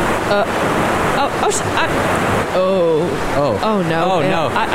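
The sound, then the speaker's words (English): Steady, loud rushing water surrounds a car submerged in about 8 feet of water, a dense churning wash that never lets up, with voices speaking over it in the second half. “We're sitting in about 8 feet of water right now.”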